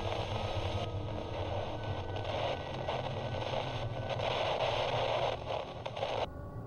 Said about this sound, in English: The radio then turned to complete static. Strange. I must have gotten out of range of that station, I figured.